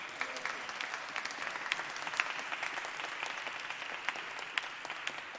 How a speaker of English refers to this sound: Our Hablamos group, really, our voting rights group, our actors and writers using art, our gospel choir, our musicians. Come on, it's okay to clap for everybody.